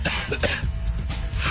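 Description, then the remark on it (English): A voice imitates the harsh, choking coughs of people smoking a blue pipe, in a quick run of rough, raspy bursts, fairly loud, ending in a breathy wheeze. “And then there's two people just sitting across the way, just this weird blue pipe coughing and choking.”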